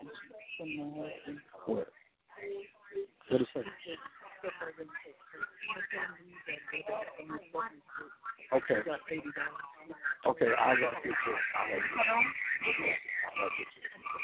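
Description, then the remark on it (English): A voice plays through many listeners' phones on speakerphone at once, stacking into a tinny, muffled echo. Overlapping copies blur the speech, and it grows into a dense, smeared wash toward the end. “Okay, now you're getting this echo because everybody got it on speakerphone right now.”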